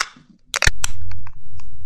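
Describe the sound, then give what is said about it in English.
A beer, The White Blackbird from Wild Heaven Beer Company, opens with a quick, sharp crack and hiss, followed by a steady fizzing and a low continuous rumble. No one speaks. “Let's just crack it open and pour them up.”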